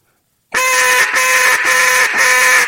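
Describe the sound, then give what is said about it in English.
A loud, raspy big turkey hen call blown on a game call without using the tongue: about four drawn-out, nasal notes running together with only brief breaks, heard alone with no talking. “So when I do a big hen and I'm hitting those hens, I'm actually not using my tongue.”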